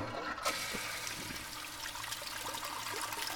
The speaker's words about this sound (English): How long of a flush is that toilet?